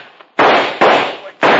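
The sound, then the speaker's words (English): Three loud, sharp gunshots crack out at uneven intervals, each one leaving a harsh, rumbling tail that fades before the next shot hits. “Well, they're shooting at us, ain't they?”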